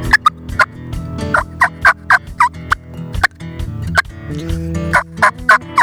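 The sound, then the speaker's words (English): A turkey mouth call produces a rapid series of short, sharp clucks, loud, in uneven bursts over a steady low background hum, with no talking. “Go ahead, show us real quick. Cluck.”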